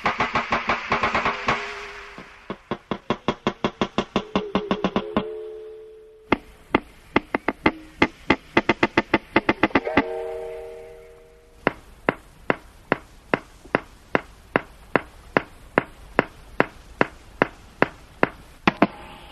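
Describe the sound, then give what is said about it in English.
Underwater breeding calls of a wild walrus, recorded underwater in the Canadian High Arctic: long trains of sharp, crisp knocks that speed up and slow down, broken by ringing, bell-like tones that swell between the bursts. No one speaks. “This medley of breeding sounds includes knocks and bells.”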